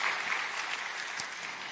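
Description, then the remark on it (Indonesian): A crowd applauds Jesus in a steady, dense wash of clapping that holds at an even level for the whole stretch, with no voices rising above it. “Tepuk tangan yang meriah buat Tuhan Yesus.”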